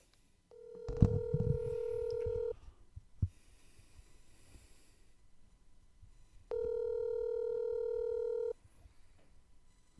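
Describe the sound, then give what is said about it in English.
Two long, steady telephone tones about four seconds apart, like a call ringing through, with a soft thump and a faint click in between. No one speaks. “is on the phone”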